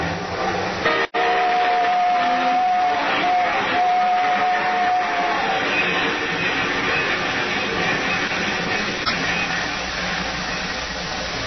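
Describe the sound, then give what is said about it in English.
A loud, long train rumbles by with continuous heavy clatter and roar, a steady high squeal or whistle tone riding over it for a few seconds early on. “Nobody's going to hear anything except this train. Yeah, there's the big baby now. A nice long train. Long and loud.”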